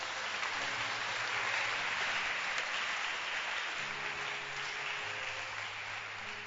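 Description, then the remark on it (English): An audience claps together in a dense, steady wash of applause that holds at an even loudness for several seconds, with a low hum running underneath and no voices. “Clap your hands for wages.”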